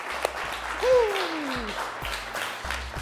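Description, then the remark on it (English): An audience applauds with dense, steady clapping for about three seconds, and a single falling whoop of a cheer rises briefly above the clapping early on. The applause is a round of applause for guest Ramit Sethi. “Round of applause, if we can, for this man right here.”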